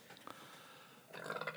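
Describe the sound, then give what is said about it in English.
A short, throaty burp rumbles out after a quiet stretch, brief and moderately soft with a rough, voiced tone, and no one is talking. “With a burp. With a burpity burp, huh?”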